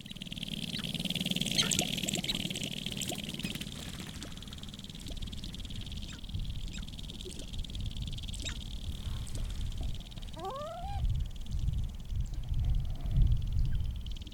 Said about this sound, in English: Yes, so in Wainwright, in the tall prairie grasslands, listening to a sharp-tailed grouse do a little bit of lekking.